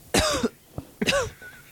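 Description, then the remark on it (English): Two harsh coughs in quick succession from two people who are both coughing, with a brief throaty catch between them, loud and raspy, with no talking. “You guys are both just coughing, right?”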